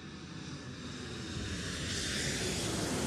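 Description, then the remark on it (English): An airplane coming in to land in Washington, D.C., its engine roar a dense, steady rumble with a hissing upper edge that swells gradually louder over a few seconds. No voices are heard. “When the plane touched down in D.C., the agents cuffed Ridgway and officially arrested him.”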